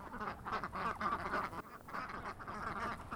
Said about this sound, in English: So our little flock of ducks, at the moment, they just free range wherever they want.